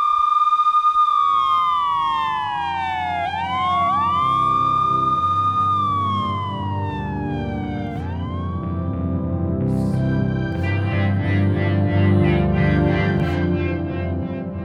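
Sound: emergency vehicle sirens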